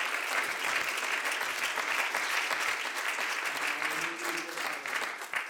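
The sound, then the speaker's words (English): A crowd of people claps steadily, a dense, continuous wash of many hands applauding at an even loudness throughout, with no voices standing out above it. “Would you clap your hands unto the Lord this morning?”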